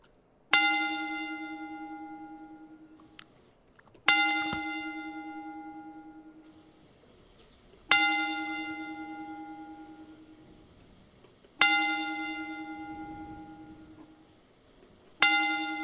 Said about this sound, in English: Let's all take a moment as we toll the bell 10 times in honor of Brody Lee.